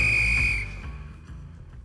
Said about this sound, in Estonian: Lõpuvilega saab jalgpallis otsa higivalamine ja algab kolmas poolaeg.